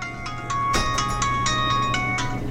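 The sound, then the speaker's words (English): A bright electronic phone ringtone plays a quick, repeating melody of evenly spaced notes, fairly loud, with a steady low hum beneath and no one speaking. “Managing all these businesses means Bobby is on the phone. A lot.”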